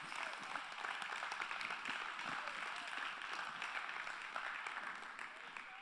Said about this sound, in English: And an elder started that hand clap just now.